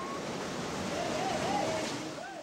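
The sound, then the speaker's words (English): Steady surf washes continuously onto a beach in Indonesia piled with used clothing after the 2004 Indian Ocean tsunami, a broad hissing rush of breaking waves that swells slightly in the middle, with faint high chirps drifting over it and no one speaking. “A beach in Indonesia piled with used clothing.”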